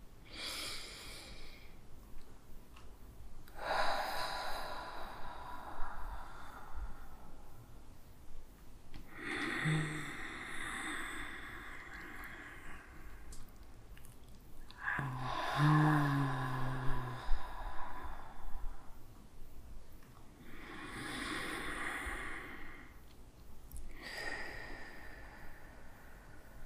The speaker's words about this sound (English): You know how we do. A couple deep breaths.